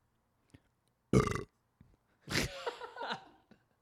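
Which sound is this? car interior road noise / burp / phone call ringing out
burp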